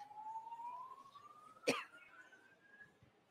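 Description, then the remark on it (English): A smoke alarm sounds as a thin, steady electronic tone that slowly rises in pitch over a few seconds, broken midway by a single sharp cough-like burst. “Damn, the smoke alarm going off.”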